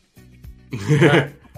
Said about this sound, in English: It's the that sniffle sound I hate.